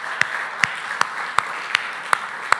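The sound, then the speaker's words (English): An audience applauds in a steady wash of clapping, with one sharper clap standing out about seven times at an even, rhythmic pace. There is no talking. “You guys should clap for that.”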